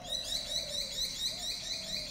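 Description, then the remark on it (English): Birds chirp steadily in the background, a quick, regular run of high, thin notes repeating about four times a second over a soft, constant ambient hum, with no one talking. “Don't worry about those naughty birds.”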